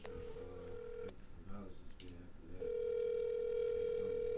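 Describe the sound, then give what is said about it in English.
A steady, electronic phone ringback tone sounds for about a second, pauses while a voice talks briefly, then rings again, louder and sustained to the end. “Yeah, I would make a phone call right quick.”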